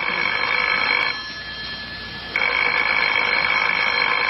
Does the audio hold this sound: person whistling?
no